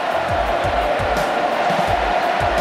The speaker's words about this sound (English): Listen to the crowd. Milne's got 10 straight.